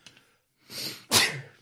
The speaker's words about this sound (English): Yeah, Gesundheit.